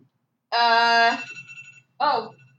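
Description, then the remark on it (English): A pill reminder alarm sounds one steady, bright electronic tone with a buzzy harmonic ring for just over a second, then a voice briefly speaks. “What's the alarm?”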